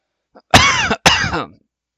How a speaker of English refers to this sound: I can't help but cough on mic right now.